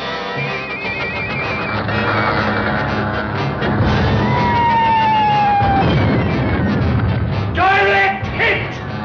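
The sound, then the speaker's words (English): Voices imitate attacking warplanes and gunfire: a loud, continuous clatter of rattling bursts, a descending whistling dive in the middle, and shouty whooshing cries toward the end. “The planes. The enemy planes. Hear them?”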